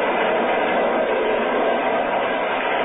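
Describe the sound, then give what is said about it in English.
A steady, dense roar of a train running at 60 miles an hour on open track at night, continuous and fairly loud throughout with no distinct clacks or pauses, and no voices. “We're running at 60 miles an hour on open track in the dead of night.”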